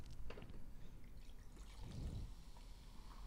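Tonic water pours steadily into a glass of Reid's gin, a continuous trickle with a fuller gurgling swell near the end; no one speaks.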